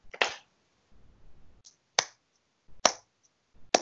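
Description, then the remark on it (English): Slow hand clapping: four sharp, loud claps spaced about a second apart, with a faint low rumble in one of the gaps. “Slow clap. Just women and women first. Slow clap for Tony.”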